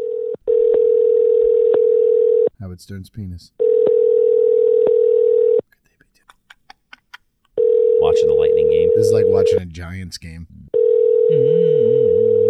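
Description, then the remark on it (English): A steady, mid-pitched ringing tone on a phone line, calling a business named Baba Louie's that does not answer, pulses on in roughly two-second bursts, with short clips of male speech and a few faint clicks filling the gaps between rings. “One more ring.”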